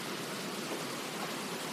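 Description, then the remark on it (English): Steady, warm rain pounds down outdoors onto an outdoor deck, heard from under the canopy of a roof, a dense, even hiss of countless drops with no distinct individual hits, holding constant for the whole stretch without any voices. “I'm switching gears because it's raining. I want you to hear this rain.”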